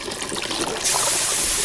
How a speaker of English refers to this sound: Can you hear the water?